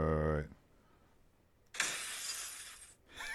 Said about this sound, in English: Eventually, he's interrupted by breaking glass.